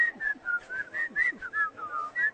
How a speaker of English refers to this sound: That's the best I've ever whistled.